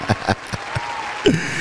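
A handful of sharp, scattered hand claps at an uneven pace, a small round of applause, followed by a brief vocal exclamation at the end.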